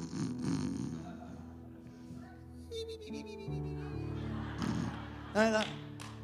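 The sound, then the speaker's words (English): A person vocally imitates their whole family snoring in harmony, producing a run of rumbling, buzzy snorts and wheezy breaths at varying pitches, fairly loud, with a sharper nasal snort near the end. “My whole family's snoring in harmony. They're just snoring. Everybody's snoring.”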